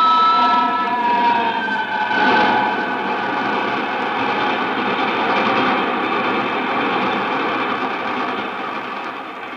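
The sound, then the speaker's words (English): A train rumbles steadily along the tracks into a curve, loud, with a continuous metallic squeal riding over the clattering roar and no voices. “And he fell under that other train.”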